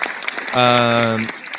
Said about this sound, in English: Where's my clap button? There we go.